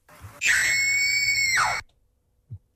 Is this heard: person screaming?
yes